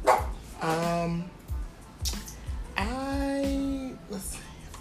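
A dog in the background lets out two drawn-out, whining barks, the second longer and sustained, with short gaps of rustling background noise between them.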